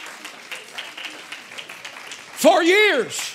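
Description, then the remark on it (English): An audience at a church service claps their hands in a dense, steady patter of overlapping claps, then a loud voice cries out in a rising and falling shout over the clapping near the end. “Come on and clap your hands, somebody.”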